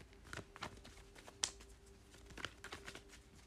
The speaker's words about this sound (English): Alright, let's shuffle the cards a little bit more.